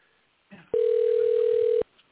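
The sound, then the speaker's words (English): A single steady ringback tone on a phone line as an outgoing call is placed, lasting about a second, loud and clear, with a brief rustle just before it and no talking. “I'm going to phone him right now, see what happens.”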